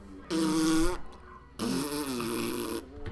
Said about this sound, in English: The overdub farting is pretty outrageous. Yeah. Can you imagine just, like, a bunch of producers, like, sitting in the studio just being like... Farting.